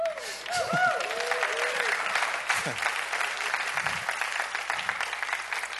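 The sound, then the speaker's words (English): A crowd at a sermon applauds steadily, a dense wash of many hands clapping throughout, with scattered cheers and whoops rising briefly above the sustained clapping. “You can clap.”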